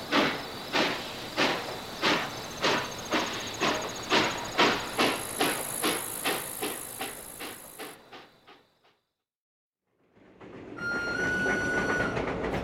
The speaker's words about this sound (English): This is the last train for the night, but I'm sure I hear another one following us. Yes, there it is. I can see it. An engine with no cars and lots of police.